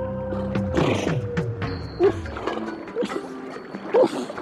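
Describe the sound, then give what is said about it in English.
Antarctic seals call in overlapping tones: long droning notes, sliding whistles and sharp chirping pulses that recur every second or so, fairly loud, with no voices. “We're listening to the sounds of seals, just one of the many different kinds of wildlife that make their home in the Antarctic.”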